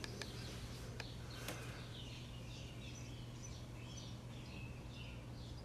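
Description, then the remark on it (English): Birds chirp and sing outdoors in a steady morning chorus at 6:28 a.m. on Tuesday, June 22, 2021, repeated high warbling phrases over a low background hum, fairly faint, with a few sharp clicks near the start. “Just going to let the birds do the talking today.”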